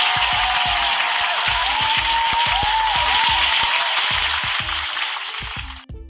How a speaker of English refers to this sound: So super round of applause to you guys.